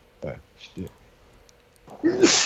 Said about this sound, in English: Bless you, puppy.